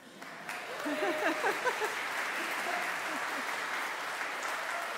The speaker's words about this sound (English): Well, you're awfully nice to clap for me.